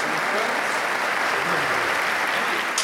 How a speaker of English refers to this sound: Three claps coming in.